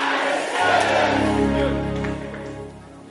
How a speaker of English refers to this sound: Clap your hands and jump and shout, "I receive it."